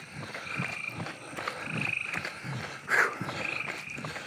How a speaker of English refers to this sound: I just heard a cicada too.